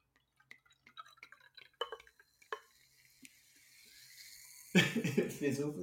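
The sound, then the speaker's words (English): Soft crackling fizz from a freshly opened bottle of Deep Waterly Prosecco, scattered tiny pops and drips over a faint hiss that slowly builds, until someone starts talking over it near the end. “fizzle”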